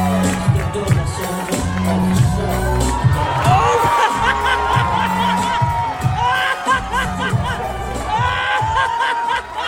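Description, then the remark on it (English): The crowd at the LA Improv comedy club roars after comedian Natasha Leggero's impromptu striptease on stage, with sustained cheering, high rising whoops and scattered laughter, loud and continuous throughout, with shrill shouts cresting repeatedly over the steady din. “After the insane crowd reaction, Natasha performed the rest of her set bare-chested with a jacket partially covering her cans, leaving the crowd and fellow comedians completely stunned.”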